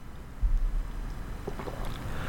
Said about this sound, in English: Was he sipping coffee? That was his coffee. That was his coffee slurp.